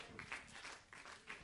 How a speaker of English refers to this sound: You got me going, you clapping like that.